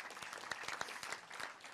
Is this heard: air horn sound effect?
no